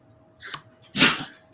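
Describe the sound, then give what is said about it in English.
A dog lets out a quick yip, then a louder, fuller bark a half-second later, with a thin, steady whine faintly underneath. No one speaks. “Yeah, my dog's being kind of dumb.”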